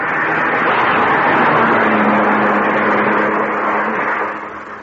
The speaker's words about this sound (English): Hey, watch that car! He's got a gun! Get down!